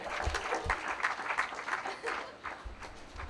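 A small audience at a storytelling show claps steadily for a few seconds for the next storyteller, a dense patter of hands at moderate volume with a few sharper claps standing out, and no talking.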